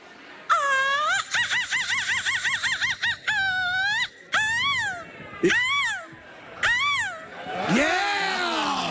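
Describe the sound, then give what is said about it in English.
A woman's voice imitates a seagull screech: a fast warbling run of high, wavering cries, then several sharp rising-and-falling squawks and a final gliding wail, loud. “give us your best seagull screech”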